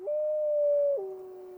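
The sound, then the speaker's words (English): A single wolf howl, a steady mid-pitched tone that slides down to a lower sustained note near the end, heard alone without any talking. “These soundscapes include a variety of geophysical sounds, such as ocean waves and thunderstorms, accompanied by the sounds that animals produce for communication, from wolves howling to frogs calling.”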